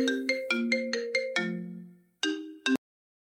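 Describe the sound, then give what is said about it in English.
A phone ringtone plays a quick melodic run of bright electronic tones, sustains a lingering note, then pauses before two final short chirps. Clear, with no voices. “That better not be you on the phone, Leo.”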